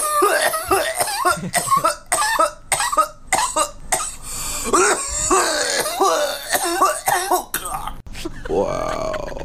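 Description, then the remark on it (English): A heavy coughing fit after taking too big a cannabis dab: a rapid string of harsh, rasping coughs mixed with strained, voiced gasps, ending in a long hoarse wheezing exhale. “Dude, that is the legitimate dab cough, bro.”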